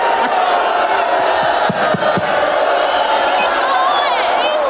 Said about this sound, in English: Yeah, he didn't handle that very well. No. And they turned on him quick. Have some respect. As soon as you acknowledge the audience booing, that's where they rise even higher.